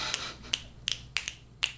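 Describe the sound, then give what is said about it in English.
Crisp finger snaps, about six of them in a loose, uneven rhythm, some coming in quick pairs, each a sharp bright click with nothing else playing and no voices. “Yeah, we need more snapping.”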